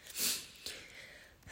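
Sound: sneeze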